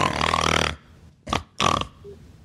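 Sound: voice imitating loud snoring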